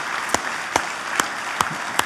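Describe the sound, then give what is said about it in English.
A church audience across two locations gives an applause to God, a steady wash of dense clapping, punctuated by five sharper, evenly spaced claps that stand out over the crowd. No one speaks. “And then last but not least, can we just really quick, I know this may feel awkward, but can we at both of our locations, can we just give an applause to God?”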